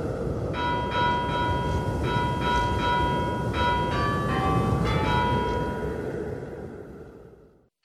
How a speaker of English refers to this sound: Why don't we ring the bell? Let's get inside, hopefully.